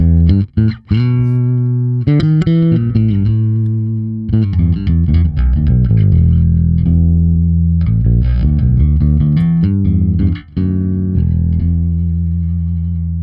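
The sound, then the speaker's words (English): A bass guitar played through an SVT amp plugin, with a steady, loud stream of punchy notes, a gritty, slightly fizzy overdriven tone, and brief pauses between phrases. No one speaks. “here's the SVT plugin.”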